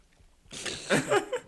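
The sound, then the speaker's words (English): Crunchy chewing of food starts after a brief quiet moment, with a few louder bites in a loose, irregular rhythm. There is no talking. “are you gonna stop chewing?”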